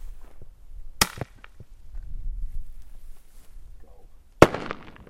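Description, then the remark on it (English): A shotgun fires a cracker shell, essentially a big firecracker, shot way up above a cub: a sharp firing crack, then a few seconds later a loud bang bursts overhead and rings out with a fading echo. Faint outdoor rustling runs between the two reports. “We just have a simple cracker shell coming out of the shotgun. It's essentially a big firecracker.”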